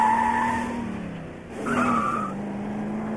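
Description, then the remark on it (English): Film sound effect of car tires squealing loudly in two long, shrill screeches back to back over a low engine rumble, with a brief dip in the middle and no voices. “And very, very few people will ever say to me after looking at a film, those tire squeals were ridiculous.”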